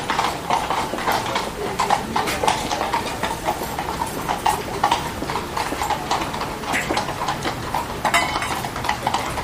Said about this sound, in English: For me, that's another one of the emblematic sounds of Île Saint-Louis, are the horses clip-clopping by. Coming from the Republican Guard, and it's wonderful to see them on the street, and it's very symbolic.